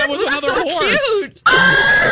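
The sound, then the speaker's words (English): A horse neighs in a loud, wavering whinny lasting about a second, then cuts off briefly before a steady, thin high-pitched tone holds to the end. “Remember, Lex, the horse reacted to it the first time he heard it out of the speakers. He thought it was another horse.”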